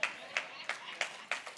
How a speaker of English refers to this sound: If you're single, these are great places to clap because it's true.